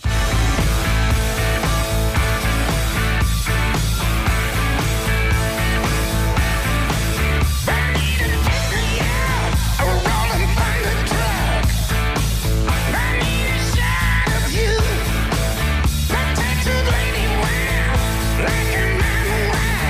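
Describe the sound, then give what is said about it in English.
Loud, dense hard rock plays throughout, with driving drums, distorted guitars and a strained, shouted-sounding lead vocal, steady for the whole stretch with no talking over it. “you know, just screaming rock and roll. Well, let's get an example.”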